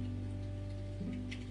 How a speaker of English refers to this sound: That rain is just.